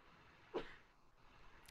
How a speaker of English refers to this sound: Hold on 1 second. I got to sneeze.